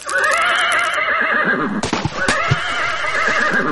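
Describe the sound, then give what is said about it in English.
A horse whinnies loudly as its rider spurs it onto a bridge of ice over a stream, a long shrill neigh broken in the middle by a few sharp knocks before a second quavering whinny carries on to the end. “However, as soon as he saw in what state the stream was, he rode up the banks until he came to a bridge of ice. on to which he spurred his horse.”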